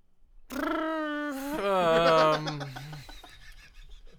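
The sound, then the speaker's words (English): A human voice imitates a bird call: a sustained, steady tone followed by a louder, warbling cry that slides downward in pitch, with no other talk. “The bird noise.”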